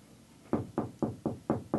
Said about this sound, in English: That's me knocking on the door trying to get them to stop.